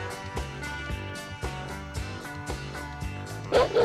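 An upbeat song with a steady, pulsing beat plays throughout, and near the end a dog's sharp, yelping barks burst in loudly over the music.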